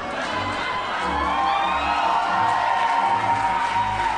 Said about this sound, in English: We're applauding liver damage. It's liver damage you're applauding